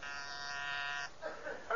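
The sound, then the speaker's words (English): An intercom buzzer gives one steady, harsh electric buzz lasting about a second, rich in overtones. It cuts off abruptly, and a voice follows briefly. “Let me buzz him on the intercom here and put your mind at ease.”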